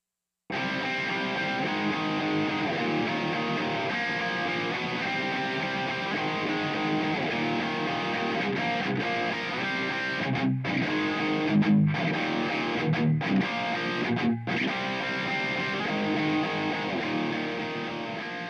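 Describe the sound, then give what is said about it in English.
A distorted electric guitar plays thick, sustained chords through a reverb set to its second hall variation with the filter switch on, pre-delay at 10 o'clock, reverb time at noon, dampening at 1 o'clock and level at 11 o'clock; steady and loud throughout, with a few brief choppy breaks near the end. No one speaks. “I've set it to the second hall variation with a filter switch on”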